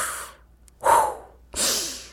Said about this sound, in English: Whenever you get anxious or angry, try taking deep breaths. Then push out all the anger in your belly. Breathe out. Breathe in.